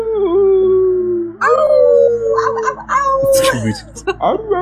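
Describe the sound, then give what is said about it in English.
Someone imitates a wolf howl, a long sustained wavering note, then breaks into a second rising howl and a few choppier yelping sounds. “Yeah, but you can only howl.”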